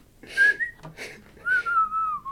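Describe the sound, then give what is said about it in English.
A person whistles a wavering melody in two sustained phrases in an online video from 2012 that shows dancing, the pitch sliding and trembling, with breathy noise around the tone and a brief pause in between. No one speaks. “It's like the mixture of the dancing with the whistling.”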